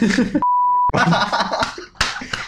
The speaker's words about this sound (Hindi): Okay, ये beep हो रहा है. तो अभी बीप ही हो रहे तो ये ले.